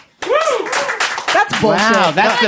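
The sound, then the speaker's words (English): An audience claps steadily, with loud whoops and cheering voices rising and falling over the applause throughout, voting by applause for a team after the final round of a debate. “That's the most that is no pity clapping.”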